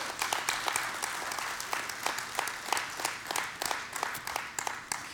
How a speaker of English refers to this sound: But let's give the Lord a hand praise, a clap of praise right now.